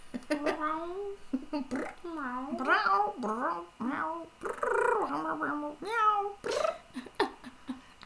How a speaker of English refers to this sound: Where's Puss? Get her meows out of the way. Squish her a couple times.